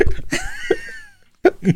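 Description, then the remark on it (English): A voice imitates hiccups: a few short, sharp vocal bursts, one stretching into a squeaky, wavering tone, then a quiet pause before two more quick hiccup sounds, fairly loud. “You have uncontrollable hiccups.”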